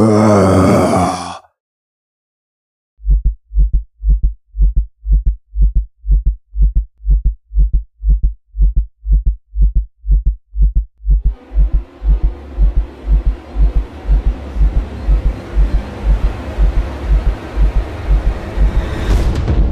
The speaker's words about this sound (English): The low, guttural roar of this gargoyle-esque monster as it is going to attempt to crash Gustum's party.